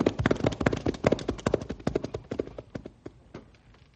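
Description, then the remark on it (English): Several rested horses, including Matilda and Storm, clip-clop briskly along a trail as they head back to town. A dense overlapping patter of sharp hoofbeats gradually thins out and fades as the animals move off. “Well, let's step on it and get back to town now that the horses are rested.”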